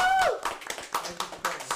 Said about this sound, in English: Let me get another round of applause.